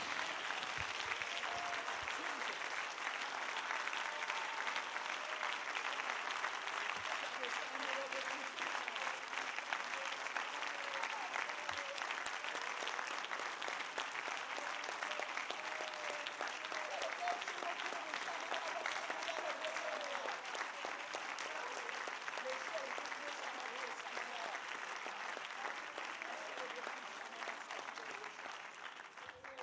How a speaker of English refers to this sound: Somebody give God a hand clap. Love on Jesus for a moment. Build up a little faith in your spirit. God wants to move on his people. Somebody can do better than that. Clap your hands with some ferocity.